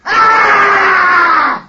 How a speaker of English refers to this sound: Ah! A wild, hoarse scream.